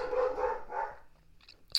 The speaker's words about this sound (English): My roommate's dog is barking in the background. I'm sorry.